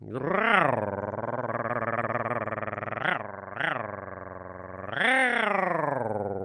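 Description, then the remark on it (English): A deep, rough growling voice drones on steadily like a Johnson 6.5 horsepower outboard motor on an old bass boat, loud and unbroken, with a few brief rising swells in pitch and no words spoken. “I sounded like a Johnson 6.5 horsepower on an old bass boat.”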